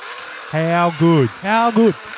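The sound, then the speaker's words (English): A voice imitates a Formula One car engine with a blown diffuser exhaust, four quick revving bursts whose pitch rises and falls in sweeping arcs, loud, with brief gaps between them. “But, like, how good does this sound? That's the blown diffuser.”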